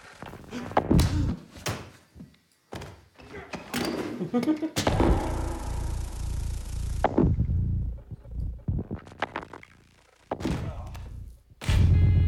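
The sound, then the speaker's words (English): Heavy thuds and a long, loud crash as one man tackles another into a wall, starting a big fight, with scattered blows, scuffling and grunting voices in a chaotic fight. “Walking out, he hears him in the shower, opens the door, runs at him, bam, that's where he tackles him, right into the wall. This is where the big fight starts.”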